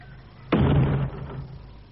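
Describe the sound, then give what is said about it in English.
A door swings shut and is locked: a single heavy thud, followed by a short rattling decay as it settles, then a quiet hum. No voices are heard. “Come in here and lock the door.”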